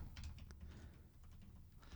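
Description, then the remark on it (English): Soft, irregular clicking of computer keyboard keys as someone types a search for the Zombieland trailer, a quick run of taps over a low, steady background rumble, with no voices. “After enough Jersey cum dumpsters, you really can't type easily.”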